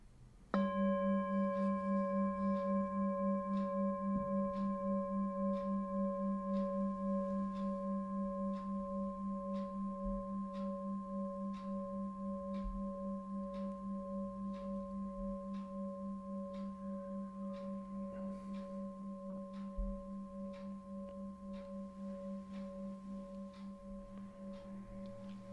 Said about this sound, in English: And the movement of the sound of the bell through time.